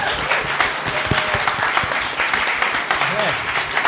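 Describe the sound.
Loud, sustained applause from an audience, dense clapping filling the whole stretch at an even level, with a few faint voices and a brief whistle-like tone rising out of it.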